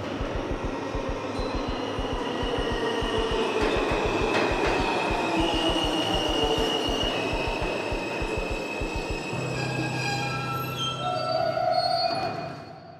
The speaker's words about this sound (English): And the train is a-coming.